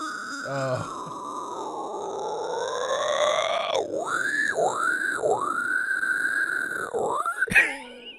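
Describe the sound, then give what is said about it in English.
A person imitates the hardcore metal 'bree' scream, an extended high, squealing vocal like a pig-squeal, rising in pitch, then warbling in several quick looping swoops before cutting off with a short burst. No speech. “that got really popular doing the, I think they would call it breeing.”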